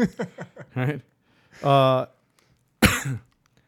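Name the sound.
cough into the microphone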